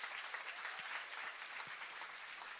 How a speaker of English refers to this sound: Just give him a little hand clap.